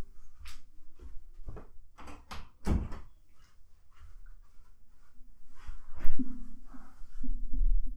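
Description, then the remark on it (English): A door is shut with a series of knocks and clunks, a heavier thud near the middle, then a final bump over a low, steady hum. No one speaks. “Hey, you forgot to close the door.”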